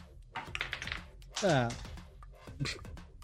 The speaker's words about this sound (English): I threw my Percy dice, and then it bounced out of my thing and then fell off my table, and so I rolled another one, and it was a nat fucking one.